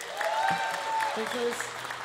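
An audience at a live band performance applauds steadily in a dense, continuous wash of clapping as the drummer is introduced, with a few sustained musical tones ringing above it.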